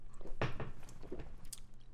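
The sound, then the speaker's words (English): Wet, crunchy chewing of spicy chicken wings, with several irregular bites and smacking squishes in a loose rhythm, fairly quiet and with no talking. “When I eat wings, I get so thirsty.”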